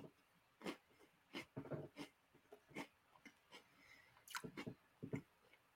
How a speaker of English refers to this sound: There's great audio. Just me crunching Oreos.